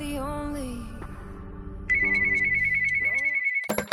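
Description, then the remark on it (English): A steady electronic tone, like a phone ringing, sounds for about two seconds over a low musical bed, then cuts off with a few sharp clicks, introducing a phone call from Rahsaan Thomas in a California state prison. “And now, a phone call from Rahsaan Thomas.”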